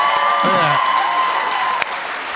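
An audience applauds steadily for a couple of seconds, a dense wash of clapping with a thin, sustained whistle-like tone and a brief vocal sound mixed in.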